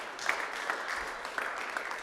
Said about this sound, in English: I mean, y'all can clap for that. That's something to celebrate.